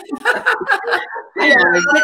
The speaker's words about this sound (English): actually finding his voice to communicate with us. Look, Max. It's a puppy.